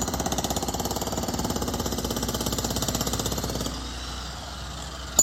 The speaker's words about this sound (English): That's right. A jackhammer. A jack frickin' hammer. Okay? A jackhammer. At 6:35.